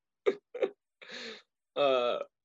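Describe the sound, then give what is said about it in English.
Two quick, sharp sneezes close together, then two longer, more drawn-out sneezes, all fairly loud with short pauses between them. “God bless you. God bless you.”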